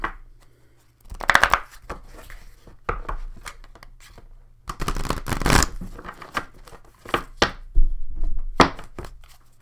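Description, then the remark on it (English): A Spellcasting Oracle card deck being shuffled by hand, a series of uneven papery riffles and slaps with short pauses between bursts, moderately loud, with no one talking. “Hands don't want to shuffle.”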